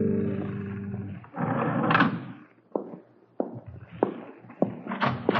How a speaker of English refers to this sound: You're late. I heard your footsteps in the hall. I opened my door and let out a call.